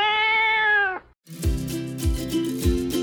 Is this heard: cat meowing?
yes